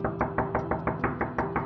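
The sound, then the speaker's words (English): A delivery woman from Jerry's Italian Kitchen, a pizza place, knocks rapidly and repeatedly on an apartment door at 9:14 p.m., about nine firm knocks evenly spaced in quick succession, clear, with no voices and no response. “At 9:14 p.m., a delivery woman arrived at Brendan's apartment, knocked repeatedly on the door, but got no response.”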